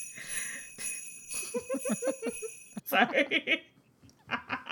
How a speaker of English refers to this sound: What's that sound? Do you hear those bells in the background? Are they ringling and jing jing jingling too?